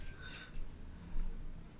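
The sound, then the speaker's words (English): Faint electronic alarm beeps: a steady mid-pitched tone for about half a second, then quiet, then a short high chirp and another brief tone at the end, over a low background rumble. “do you not know how to turn off the alarm yet?”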